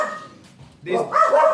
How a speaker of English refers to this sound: You're upsetting the dogs.